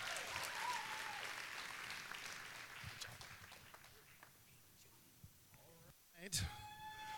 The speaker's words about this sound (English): Praise God. Give him one more round of applause to God.